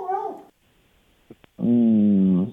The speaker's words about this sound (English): Besides that dog barking, but yeah, what's your biggest regret?